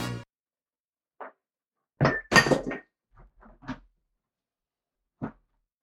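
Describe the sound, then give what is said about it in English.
Beer and water spilling onto the floor: a burst of sharp clunks and clinks as drinks get knocked over, a few softer knocks trailing after, then one last tap amid silence. “Little guy, no one's gonna tell that you spilled all your beer and your water all over the floor.”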